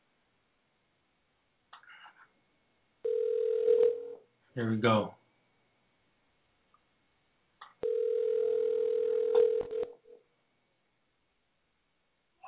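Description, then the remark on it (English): A phone call rings out through a handset as someone calls a man up: two long steady ringback tones with a pause between, a short burst of speech in the gap, and faint clicks at the start. “You know, let's see if he answers his phone. We're going to call him up.”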